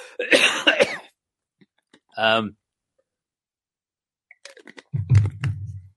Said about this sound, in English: Hold on a sec while I clear my throat.